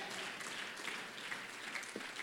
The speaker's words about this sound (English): Oh, somebody clap your hands and say amen to that.